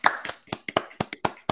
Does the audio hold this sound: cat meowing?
no